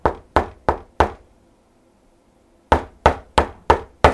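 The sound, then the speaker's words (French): Knocking on a door: four firm raps, a pause of nearly two seconds, then five more evenly spaced knocks, each a sharp wooden thud with a short decay and no voices. “Samedi, pendant qu'elle lisait, une personne toqua à la porte.”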